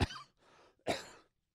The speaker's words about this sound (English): Pardon the coughing, but what am I going to do? I'm human, I cough, so what?